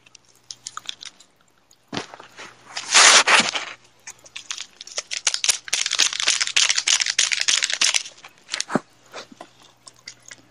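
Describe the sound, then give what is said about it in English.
A plastic Pop Rocks candy packet crinkles and crackles as it is handled before being cut open with scissors, in uneven bursts with a dense, busy stretch in the middle before it trails off into a few scattered rustles. “Find my scissors to cut this packet open with.”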